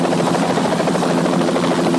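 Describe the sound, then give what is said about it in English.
A loud, close helicopter roars steadily as it lands beside a police training academy, its rotor throbbing in a dense, continuous wash of engine noise with no voices or pauses. “Chopper 9's landing there. It's loud.”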